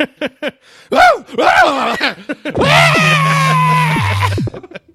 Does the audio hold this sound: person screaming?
yes